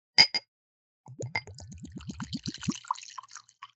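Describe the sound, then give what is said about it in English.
Two sharp clinks, then whiskey glugs out of a small sampler bottle into a glass in a quick run of about eight gurgles that climb in pitch, ending in a light trickle and drips. “Dude, I love the sound of whiskey being poured, even though it sounds like water or anything else, but I just love it.”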